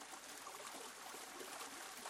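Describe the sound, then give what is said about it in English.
Water pours steadily over a mill wheel, running down the side of the wheel and evenly across the front paddles, a continuous broad splashing rush with no breaks, even in level, with no voices. “Instead, it forces the water to run down the side of the wheel and evenly across the front paddles.”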